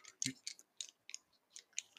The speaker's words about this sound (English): Hear these dice? This is your death, bitch.